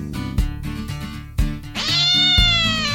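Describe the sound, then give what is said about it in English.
A loud, drawn-out cat meow rises in the second half and holds to the end, clear, over rhythmic background music with steady low beats, as in a story a cat hidden under Tom's bed springs out at Aunt Polly. “A cat that Tom had hidden there sprung out at Aunt Polly.”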